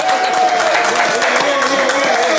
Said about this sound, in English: Let's give him an applause for that.